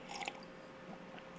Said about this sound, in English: All right, I'm just gonna take a little sip of my coffee here.